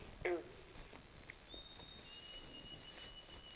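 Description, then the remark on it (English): A white-throated sparrow gives a faint, high call of long, pure whistled notes, each held at a steady pitch, with the later notes slightly lower, over quiet background hiss, heard from out on a beaver dam. “It's a white-throated sparrow. Do you hear that? Beautiful call.”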